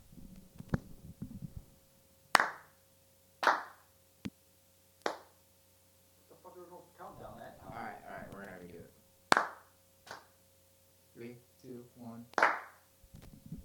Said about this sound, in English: We're going to do a clap sync again. Clap sync.